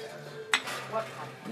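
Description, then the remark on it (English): A single bright clink of a coffee cup tapped in a toast, sharp and ringing briefly, followed by softer clattering of dishware and a faint low hum underneath. “Here, my coffee, I guess. Cheers.”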